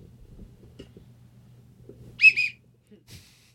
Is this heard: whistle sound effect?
yes